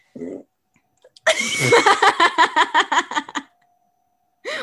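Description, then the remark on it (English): A pet dog lets out a loud, drawn-out burp lasting about two seconds, croaky and rattling with a rapid string of pulses, with brief bits of a voice just before and after. “He just burped so loud. It was my dog.”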